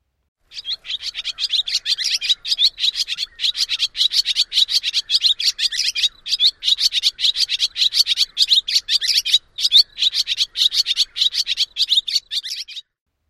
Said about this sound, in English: The barn swallow dawn song is similar, but they drop the mechanical sounds and the cluster the twitters into groups of 2 to 5. Here is the barn swallow dawn song.